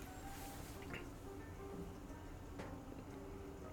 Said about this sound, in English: Man, I added a little water.